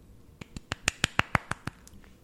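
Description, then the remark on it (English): A quick run of about ten hand claps in a steady, fast rhythm, swelling louder toward the middle and then tapering off, with no one talking. “Wait, can I clap? You're allowed to clap.”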